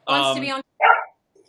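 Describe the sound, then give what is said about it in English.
A pet dog barks twice during a livestream: a drawn-out, tonal bark followed after a short pause by a brief, rougher one, both fairly loud. “And then as soon as we go live, he just like decides he's going to be a nut.”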